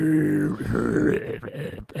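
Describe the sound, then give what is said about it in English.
A deep, guttural growling singing voice from a metal song rumbles for about two seconds, loud, its rough croaking tone sounding much like drawn-out burping, the lyrics unintelligible. “And basically, all the lyrics sound like the guy is just burping.”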